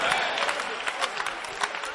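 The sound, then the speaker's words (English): A crowd applauding steadily as a clap offering to the Lord, dense overlapping hand claps forming a bright, sustained wash of sound with a few sharper claps popping out, no clear rhythm. “Why don't you give the Lord a clap offering for his beautiful salvation?”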